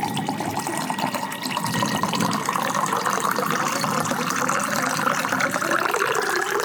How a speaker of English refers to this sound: I reached for the bottle of tequila and poured myself a healthy glass.